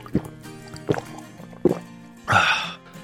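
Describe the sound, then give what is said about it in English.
Water being poured and drunk on a hot day: three evenly spaced gulping glugs, then a brief, bright splashing rush of liquid near the end. No one speaks. “Wow, it is so hot today. I need some water.”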